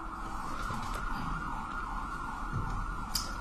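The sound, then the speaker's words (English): An emergency vehicle siren wails steadily outside in Denver throughout, its rising and falling tone somewhat muffled over a low rumble of traffic. No one speaks. “I understand sirens, unfortunately.”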